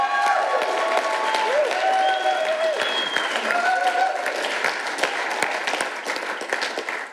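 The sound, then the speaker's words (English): A crowd applauds steadily for several seconds, dense clapping filling the whole stretch, with a few voices and whoops rising through it before the clapping slowly thins toward the end. “because let's give a big hand”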